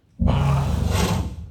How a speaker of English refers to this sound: Ooh, that is a new one. That's a new one. Was that like a wolf or whatever?